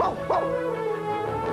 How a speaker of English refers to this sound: Why do you bark, Pluto? You're supposed to be a mime.